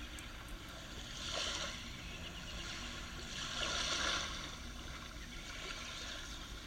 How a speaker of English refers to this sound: You hear the waves and the seagulls, birds. The sounds of the ocean drown out the human voices far down the beach.